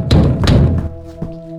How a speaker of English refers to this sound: According to the police report, the officers knocked, announced themselves, and then entered through the front door.